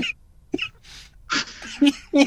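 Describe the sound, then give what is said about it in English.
A few short, rough coughing bursts, irregularly spaced, mixed with breathy voice sounds and brief vocal noises in between. “So while you're coughing.”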